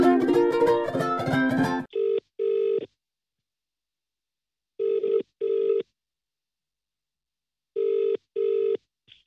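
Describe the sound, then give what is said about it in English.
A telephone rings in a steady double-burst pattern as a call is placed, three pairs of buzzing rings separated by silence, after a brief busy flurry of tones at the start. No one speaks. “Well, I'll tell you what, we can't phone him in here, can we? No. No, better go through to the telephone room.”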